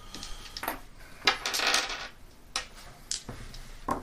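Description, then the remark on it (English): Dice rattle and clack across a hard tabletop, a series of sharp clicks and short tumbling clatters spread unevenly over a few seconds, with no voices. “I'm rolling 2 feet dice.”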